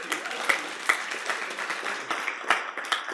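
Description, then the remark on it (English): An audience at MCC breaks into scattered, overlapping hand claps in its practice called back the clap, a dense patter with a few sharper individual claps standing out, no voices heard. “If one person claps, you all have to clap.”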